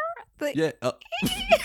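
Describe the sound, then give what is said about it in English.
A person's voice tries to imitate cicadas but produces short, wavering meow-like cries, a few quick bursts followed by a rougher, noisier squeal, with other voices present. “No, I think that's what you call a cat.”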